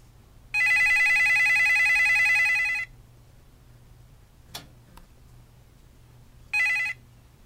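A telephone rings as a call is being placed, in a long, warbling burst lasting about two seconds, then a pause with a faint click before a second ring begins, heard alone over a low background hum.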